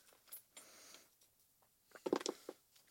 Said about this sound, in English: Oh, I need you to roll me a D10. Oh, different dice.